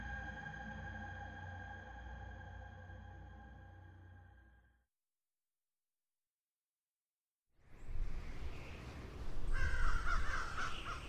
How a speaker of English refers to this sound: The crows were coming again.